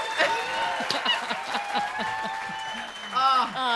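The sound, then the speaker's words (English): A small group of voices cheers with drawn-out, rising whoops while hands clap in a quick, scattered patter, a brief and lively burst of celebration. “Cheering. Yay. Yay.”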